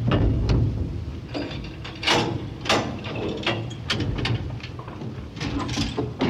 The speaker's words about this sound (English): Please stand clear of the closing door.